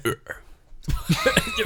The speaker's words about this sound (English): You're going to throw up. I'm telling you, I have to burp. I just don't know how to.